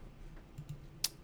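A few soft, irregular keystrokes on a computer keyboard as a name is typed in, ending with one sharper, louder click; no one speaks.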